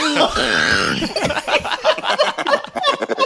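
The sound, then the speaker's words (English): A violent coughing fit: a strained, drawn-out vocal heave, then a rapid run of harsh, loud, irregular hacking bursts that keep going without letting up. “Oh my god, I almost coughed up a lung.”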